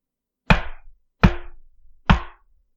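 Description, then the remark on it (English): Three loud knocks on a man's door at a late hour, evenly spaced about three-quarters of a second apart, each a sharp wooden thud with a brief ringing decay and no voices. “Another three taps came.”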